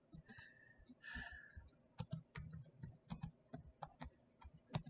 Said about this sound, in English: I'm just typing this up because I want this verse.